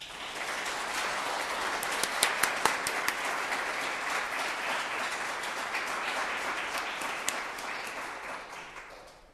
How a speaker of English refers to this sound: They've been very good in their preparation and very good on their first Holy Communion Day, so I think we should give them a big round of applause.